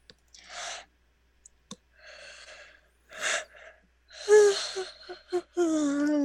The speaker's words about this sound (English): Buddy. Big yawn. Big yawn indeed.